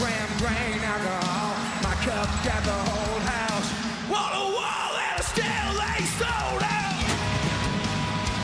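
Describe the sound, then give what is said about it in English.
An energetic, hyped-up scream of "yeah" rings out loud and sustained over a dense, driving wall of music that continues steadily throughout. “Was there a track doing the actual scream?”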